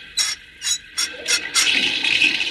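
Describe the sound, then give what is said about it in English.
A few quick ratcheting turns of a spigot give way to a steady, hissing rush of water pouring through a pipe into a steam engine boiler, fairly loud, with no voices. “Now the water will go into the engine boiler.”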